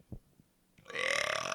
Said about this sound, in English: Hold on, I got a burp.